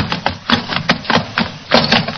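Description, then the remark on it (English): A lantern smashes during a Sherlock Holmes scene amid a quick series of loud, clattering crashes and knocks, irregular bursts of breaking and banging with no voices. “The lantern smashed.”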